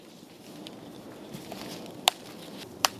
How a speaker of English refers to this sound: Hear that crunch as the pomelo breaks off the branch? In Tainan, it's the familiar sound of a family reunion.